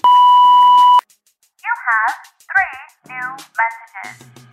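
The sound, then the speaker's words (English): A single loud, steady voicemail beep lasting about a second, followed after a brief pause by a person beginning to speak. “All right, now go ahead and leave your question at the sound of the beep.”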